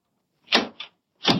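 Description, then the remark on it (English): A locked door being tried but not opening: a couple of sharp rattling jolts, a short pause, then another hard clattering tug, with no voices. “Quiet. Open the door easy.”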